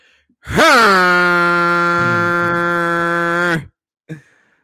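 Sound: horn sound effect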